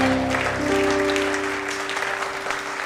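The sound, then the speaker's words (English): An audience claps for the Lord in a dense, steady wash of applause, loud at first and easing slightly, while sustained low keyboard chords hum underneath. “Give the Lord a clap in the house.”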